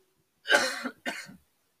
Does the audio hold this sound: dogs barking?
no